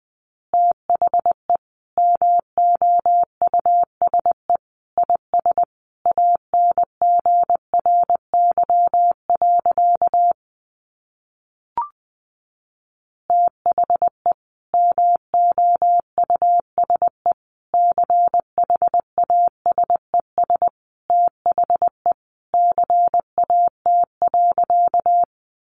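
Morse code sent at about 20 words per minute: a single steady mid-high beep keyed into quick dots and dashes, with one brief pause partway through, no voices.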